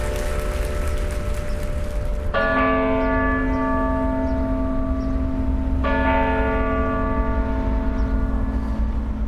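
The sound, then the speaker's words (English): Church bells ring out at May Day festivities in Oslo, Norway, in two loud, resonant strikes a few seconds apart, each leaving a long, humming tone that lingers over a steady background wash, with no voices. “We leave you this week ringing in the month of May.”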